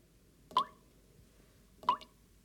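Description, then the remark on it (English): Two separate water drips from a dripping tap fall about a second and a half apart, each a short, clear plop with a bright ringing tone, against a quiet background with no voices. “Things that you tolerate, things that you just become accustomed to, and it's kind of like, oh, it's just there and it just is, like a dripping tap.”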